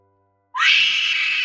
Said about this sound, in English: One last scream of hatred from the Lal Chudail escaped through the magical seal and echoed through the chambers of the cave system.